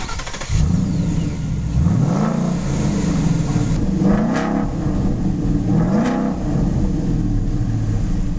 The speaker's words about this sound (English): And especially, you notice it once you start up the engine. Just listen to the sound of it.